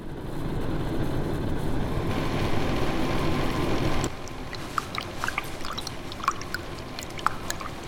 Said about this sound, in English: the noise, energy and dripping water of air conditioning when it's only 28 degrees outside?